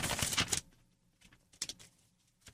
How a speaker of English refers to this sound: Let's take a look. Let's rustle these papers. Let's rustle these papers.